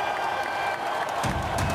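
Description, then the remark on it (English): A large crowd of mostly young men at an Xbox 360 launch event roars and cheers in a continuous, dense wash of voices as hangar doors slowly slide open, swelling louder toward the end with a burst of low rumble and whoops. “The crowd roars and then roars again as the hangar doors slowly slide open.”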